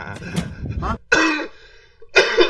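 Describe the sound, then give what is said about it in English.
Two sharp coughs burst out after a stretch of breathy, laugh-like voicing, with a short quiet gap between them; the second cough is harsh and rough. “I done a laugh cough right there.”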